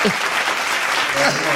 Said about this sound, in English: I want you to find the applause on here.